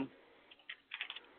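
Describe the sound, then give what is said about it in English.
Papers being shuffled: a few soft, crisp rustling bursts in quick succession, quiet, with no talking. “Sorry, I got my paper all messed up here.”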